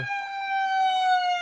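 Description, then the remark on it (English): An ambulance siren sound effect wails in a steady, sustained tone, loud, with a faint brief noise at the very start and no talking. “We have the siren.”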